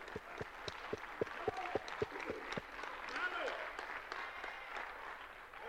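A group of people clap their hands for the glory of the Lord in a steady, fairly quick rhythm for a couple of seconds, then the claps blend into a looser crowd applause and murmur that fades into general background noise.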